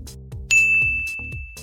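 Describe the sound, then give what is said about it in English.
A single clear bell ding, marking the stop of an exercise in a workout, rings out at full strength and hangs with a long, bright sustained tone over a steady background of rhythmic music, with no talking. “There's a handy little bell sound too.”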